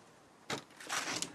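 The front door of a retired secondary school teacher opens: a sharp latch clunk, then a longer, rougher sweep as the door swings open. No voices.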